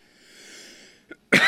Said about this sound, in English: All right, let's get to this day in history, and then we'll get out of here so you don't have to keep listening to me cough.